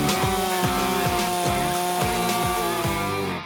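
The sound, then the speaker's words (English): A small 36 cc semi-detailing chainsaw cutting wood, its loud buzzing engine droning steadily while the pitch dips and recovers in a repeating rhythm as the chain bites, before cutting off at the end. “A nice little semi-detailing saw. This is 36 cc's.”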